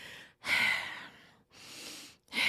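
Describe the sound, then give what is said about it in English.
A voice imitates loud, heavy breathing: a sharp noisy inhale, a pause, then a long rasping exhale, with another breath starting at the end. “You know how some people just breathe really loud?”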